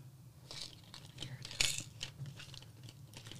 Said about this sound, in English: And I think I have some here. Nice. Might be able to show you, but it's basically it's a spray that you can put. I'm going to be making noise here, I'm digging in my purse.